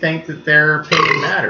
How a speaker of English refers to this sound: That was a burp fart.